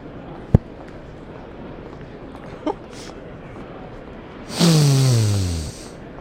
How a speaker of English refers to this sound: Sniff it again, but I'm going to put the microphone next to you. Okay. All right, now sniff.